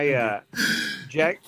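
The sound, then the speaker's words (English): A single loud sneeze: a rising voiced intake, a brief pause, then a harsh, breathy burst, followed immediately by a short vocal sound. “Yeah, Gesundheit.”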